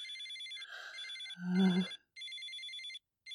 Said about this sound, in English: Oh my god, the phone! Oh, not again.